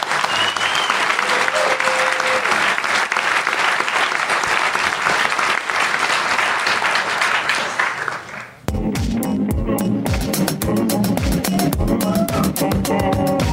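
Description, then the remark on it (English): A large live audience at a Canadaland show on a snowy night applauds loudly and steadily for about eight seconds, for themselves, the panelists and Jan Wong. Then the clapping cuts off and rhythmic music begins. “Thanks, one last time, I want to thank everybody here for coming out on this snowy night, and I'd like you to give yourselves a round of applause and a round of applause for our panelists and for Jan Wong.”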